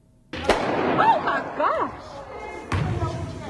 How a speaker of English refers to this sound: What was that? Sound like a gun. Gunfire inside of a gym during a Gastonia youth basketball game. The shots sent parents and kids scrambling.